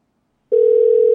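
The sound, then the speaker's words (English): After a short silence, a steady electronic telephone ringing tone of an outgoing phone call starts and holds at an even, fairly loud level. It's a single continuous tone with no voices. “Oh, shit, it's ringing.”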